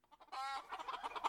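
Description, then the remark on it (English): A chicken sound-effect button is pressed: a chicken squawks and then clucks in a quick, choppy series, loud, with no one talking over it. “I keep forgetting to press the chicken button. This is definitely a chicken, right?”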